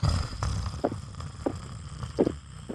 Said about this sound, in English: No, I only hear your snoring.